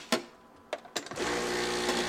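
A few sharp clicks and knocks, then an espresso machine is switched on inside a home while milk is steamed and poured. It rises into a steady, buzzing mechanical drone with a faint tonal whine that holds to the end. No one speaks.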